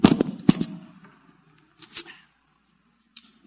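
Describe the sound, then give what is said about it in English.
A microphone worn on a pair of glasses gets knocked off: two sharp, heavy thumps in quick succession, then scraping handling noise and a couple of fainter clicks and bumps. No one speaks. “Those of you that are listening on radio, I flipped off my microphone on my glasses.”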